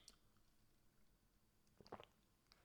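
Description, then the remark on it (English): A quiet sip of blackcurrant squash: a brief wet slurp and gulp, with a few small mouth clicks before and after, and no talking. “I'm just going to take a little sip of black currant squash here.”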